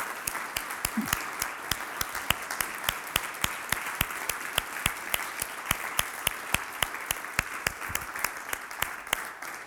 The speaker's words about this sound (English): And so I want you to stand this morning and honor my wife by with just a hand clap, if you would. Amen.